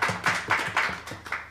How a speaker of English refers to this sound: Let's give them all a nice round of applause.